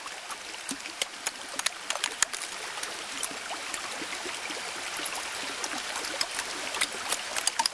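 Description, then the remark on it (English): Ice melting at Alaska's Columbia Glacier: a steady wash of trickling water peppered with sharp, irregular pops and crackles, fairly quiet, with no voices. “Jonathan Storm recorded the sounds of ice melting at Alaska's Columbia Glacier”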